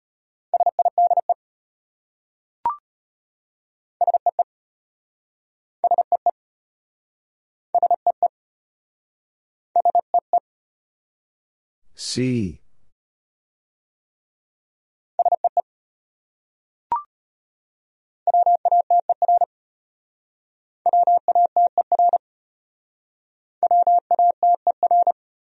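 Morse code at 25 words per minute: quick clusters of short and long beeps in one steady mid-pitched tone, separated by silent gaps, with a couple of faint clicks and one brief swooshing sweep.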